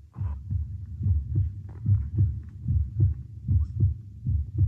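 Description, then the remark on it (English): A loud, pounding heartbeat thumps steadily in deep double beats, repeating about a dozen times over a low, muffled rumble, with no voices; the heart of a condemned man pounding as he is brought to the gibbet to be hanged. “He was brought to the gibbet, his heart pounding.”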